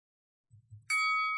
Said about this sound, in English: Benji, get ready to defend. Wait for the bell.